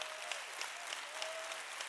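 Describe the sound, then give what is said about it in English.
An audience claps steadily in praise to God during a sermon, dense, overlapping applause, a bright crackling wash with a few louder claps standing out and a faint sustained tone underneath. “Somebody clap your way through the pain.”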